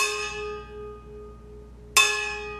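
A fork strikes a steel water bottle twice, each hit ringing out like a small gong with a bright, shimmering tone that slowly fades; the second strike lands about two seconds after the first.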